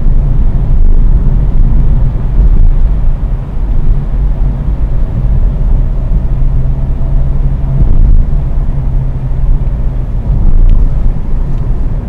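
Steady, loud low-frequency rumble of road noise inside a car driving to work in the early morning, 12 degrees outside, a continuous droning hum with faint engine tones and occasional small bumps, with no talking.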